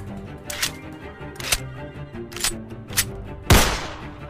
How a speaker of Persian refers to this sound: من با تفنگ باید به یکی از اونا شلیک میکردم.